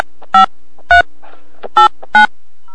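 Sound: telephone call ringing tone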